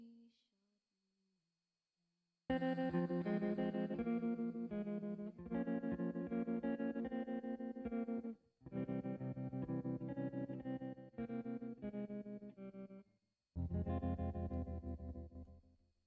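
A recorded 1960s pop song plays, a wavering tremolo guitar ringing out in sustained, harmonically rich chords, with brief breaks in the sound after a quiet opening moment.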